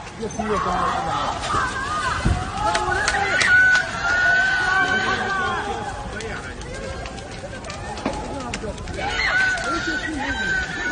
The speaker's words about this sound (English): You can hear people screaming for their lives because they are locked in. They're trapped inside of their building.